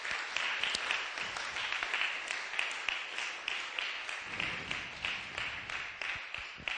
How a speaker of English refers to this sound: Just give them a round of applause as they come.